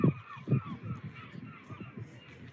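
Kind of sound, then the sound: bird, seagulls calling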